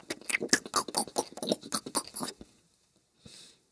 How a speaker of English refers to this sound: Chew on those eggs